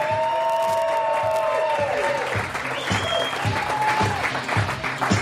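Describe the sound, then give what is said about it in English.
A crowd at CSC Philadelphia, the home of comedy sports, cheers and applauds loudly and steadily at the start of the live Tony Bruno Show, with dense clapping, whoops and a couple of shrill whistles rising above the roar. “Welcome to CSC Philadelphia, home of comedy sports and the Tony Bruno Show live as the crowd goes wild.”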